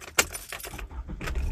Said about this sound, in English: There's a cat jumping on my car.